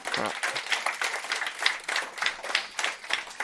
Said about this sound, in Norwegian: Så en liten applaus til de I Moss.